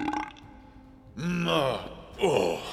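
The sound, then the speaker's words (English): A loud, drawn-out belch rolls out in two throaty, gurgling bursts, performed by a voice imitating the belch of the drunken Cyclops Polyphemus after three bowlfuls of wine. “He sat back, too drunk to stand, and let out a mighty belch.”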